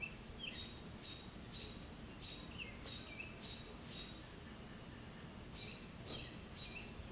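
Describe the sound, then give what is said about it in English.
Repeated high chirps from several birds ring out over a steady, hissy outdoor background, coming in a loose rhythm of short calls with no one speaking. “I can still hear all those birds, and so can you, I'm sure.”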